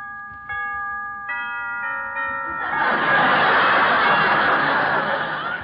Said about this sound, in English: I finally found it, the house on 92nd Street. It was a creepy-looking joint. I walked up the rickety steps. I rang the doorbell.